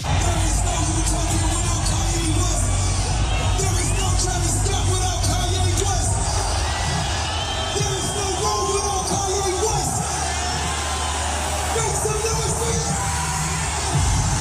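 A large concert crowd at a singer's show in Rome roars and cheers continuously as he brings out another singer as a surprise, a dense wall of shouting and whoops that stays loud throughout, with scattered yells rising above the steady din.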